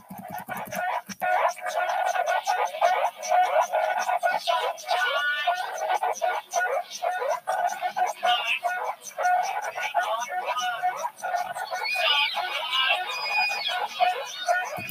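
A busy synthesizer piece made with a Miniboot 2S, using its looping envelopes and two LFOs for patterned noise repetition, along with a Make Noise Maths module. Warbling, chirping tones wobble and swoop in pitch over a steady pulsing texture, staying loud and dense throughout.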